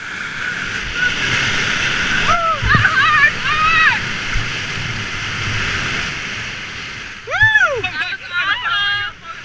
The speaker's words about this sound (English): This boatload of whitewater raft guides in training has just successfully navigated the most technical Class 3 rapid on the Deerfield River.